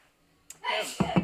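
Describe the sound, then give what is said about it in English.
A single sneeze lands suddenly, fairly loud: a quick breathy lead-in, then a sharp burst of noisy air, followed by a couple of short vocal bursts. “Bless you.”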